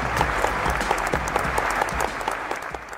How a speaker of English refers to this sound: So warm round of applause